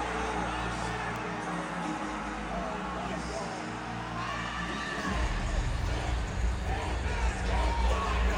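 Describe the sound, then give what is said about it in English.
A huge stadium concert crowd roars and yells continuously as the performer appears on the Jumbotron screen, a dense wall of cheering voices that swells louder with a deep booming rumble about halfway through. “when I saw him on the Jumbotron, that was …, I was yelling a lot. Let me play it.”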